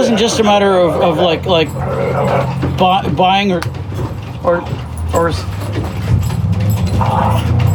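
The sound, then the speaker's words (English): Two dogs play-fighting, trading growls, whiny yips and scuffling noises in a busy, continuous tussle with a steady low rumble underneath. “we do not promote dogfighting here on Craft and Girl, but Nika is killing Taffy right now”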